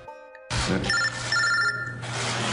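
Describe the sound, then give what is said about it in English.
Senator Chuck Schumer's flip phone rings during a virtual meeting with Transportation Secretary Designate Pete Buttigieg, a repeating electronic melody of bright, steady tones, loud, over a low background hum and faint room noise. “Schumer was holding a virtual meeting with Transportation Secretary Designate Pete Buttigieg yesterday when his phone rang during the event. He showed he was using a flip phone, not a more up-to-date”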